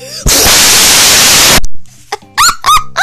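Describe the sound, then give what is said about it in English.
A loud, harsh, buzzing raspberry blast lasts over a second through a tinny phone speaker, followed by a few short, high squeaky chirps. “You just try to do a raspberry on your freaking.”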